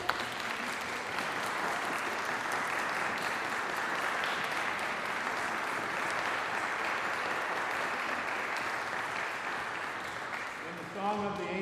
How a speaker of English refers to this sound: With happiness and applause, let us greet our newest members.